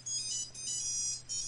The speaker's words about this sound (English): That's the old Nokia ringtone. Oh, you went old school. That's not, no. It sounds like a creepy carnival. Sounds like flea carnival or something. It's one of them that came on the Nokia.